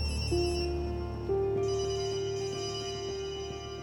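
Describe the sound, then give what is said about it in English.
Several mobile phone ringtones chime at once from the wreckage after a train crash, overlapping electronic melodies starting one after another and blending into a continuous, layered ringing with no voices. “Countless ringtones blur out from the wreckage.”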